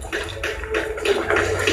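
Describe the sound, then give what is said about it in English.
Water drips heavily from a ceiling and splatters steadily, a dense wet patter with irregular louder splashes over a low rumble, moderately loud, with no voices. “Made the water drip from the ceiling was so heavy.”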